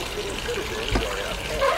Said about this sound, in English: I went into the bathroom, running the tub full of water, and turned the radio on.